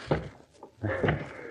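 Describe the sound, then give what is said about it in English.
Fists pound in panic on a door barred from the outside, in a lodge in a North African forest at dawn: a few dull, booming thuds in an uneven, frantic rhythm, while a strained voice cries out for help. “As we return to them now in the ghostly dawn, they are still hammering their fists on the door in a fit of panic, still shouting hopelessly for help.”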